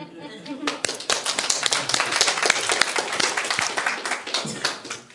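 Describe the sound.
A small group at a Sunday morning church message gives a round of applause: dense, crisp hand claps overlapping continuously for about five seconds at steady loudness, with some voices mixed in underneath.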